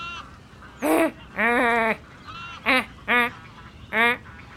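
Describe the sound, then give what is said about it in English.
A person imitates a rubbish-rummaging ibis with five nasal, honking calls, strong harmonic bursts spaced irregularly over a few seconds, fairly loud with a quiet background in between. “Can you make the sound of a rubbish rummaging ibis?”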